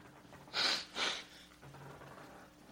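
Someone blows their nose: two quick, forceful bursts of noisy air, the second a bit shorter, followed by a low, quiet hush.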